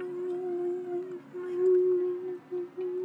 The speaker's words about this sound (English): I think there might be a little snake in here. A little growly snake. But okay. I'll find it with my locator.